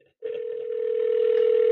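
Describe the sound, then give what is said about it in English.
A steady electronic ringback tone from a phone line, the first ring of an outgoing call, starts abruptly and holds one even, continuous pitch, fairly loud, with no voices over it. “Oh, that's the first ring-a-ding-a-ding-y.”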